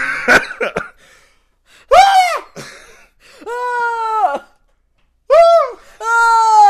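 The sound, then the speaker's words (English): A person's voice imitates a cat screaming, a few loud, strained yowls with rising and falling pitch, separated by short pauses and opening with a quick burst of breathy vocal noise. “I think cats yowl. I mean, I guess this cat screams.”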